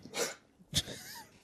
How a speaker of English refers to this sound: Sorry, my dog's coughing right in front of me.